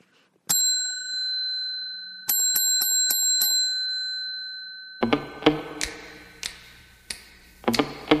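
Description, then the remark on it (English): A bright bicycle-style bell at Bluffers Park, as it has just started to rain, rings once and hangs in the air, then dings in a quick burst of about five rapid strikes. After a pause come rustling noise and a few sharp clicks. “Oh, didn't even get the bell. I'll sign out with it.”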